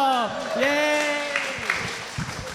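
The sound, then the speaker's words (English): An audience at a live show at the Coalition Theater claps steadily while loud, high voiced whoops and cheers rise and fall over the top, the noisy applause continuing throughout the short burst. “Everybody give it up one more time for”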